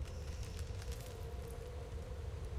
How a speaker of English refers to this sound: The sound of creaking ice.